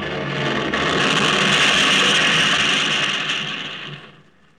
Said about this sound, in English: I was thrown from the plane when we crashed.